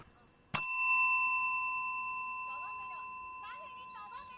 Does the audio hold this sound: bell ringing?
yes